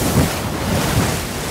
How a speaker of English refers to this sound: As he delighted in his joke, another wave came crashing in.